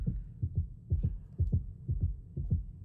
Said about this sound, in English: It's the heartbeat going.